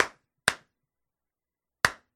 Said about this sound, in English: Trying to clap real loud.